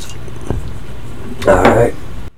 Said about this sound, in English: Trying to pour in half, give you a little ASMR love right now. About half of a bottle, right?